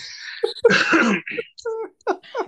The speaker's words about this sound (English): Excuse me, I needed to cough.